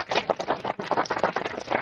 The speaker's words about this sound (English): Can you hear that? Yeah, it sounds like a really bad a clapping.